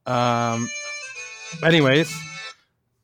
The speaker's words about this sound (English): And oh, getting a phone call.